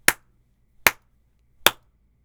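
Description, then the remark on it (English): Three crisp, clacky keystrokes on the W and spacebar keys of a keyboard with Gateron blue switches land at a steady, unhurried pace, each a short sharp click with a brief tail, with quiet pauses between and no talking. “And for the gaming folk out there, now I am typing on the sad W and spacebar keys.”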